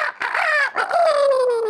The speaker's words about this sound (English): And so, sure enough, the next day came around. The rooster did its crowing like every morning.